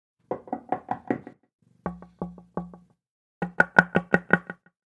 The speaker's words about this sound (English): Even in my sleep, always the knocking.